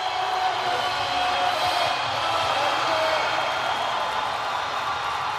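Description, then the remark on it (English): A large crowd at the 2022 Arnold Strongman Classic roars and cheers on competitor Chloe Brennan as she attempts to lift the Dinnie Stones, a dense, steady wash of voices and shouting that holds at a loud level for the whole stretch, with no single voice standing out. “Man, listen to this crowd get behind.”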